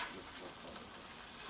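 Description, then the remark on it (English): Eggs sizzle in a pan with a steady, crackling hiss that holds evenly throughout, fairly quiet, with no voices over it. “Is everyone cool with the sunny side up egg?”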